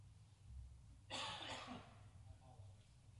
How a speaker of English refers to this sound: Excuse me, I got a cough.